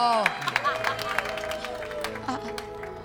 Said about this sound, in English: It was I a tiebreaker. We got the little applause.